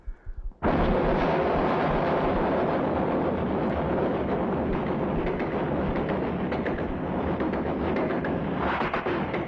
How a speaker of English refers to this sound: Now, if you know anything about trains, if you've ever been around a train, here's a sound you'll never forget.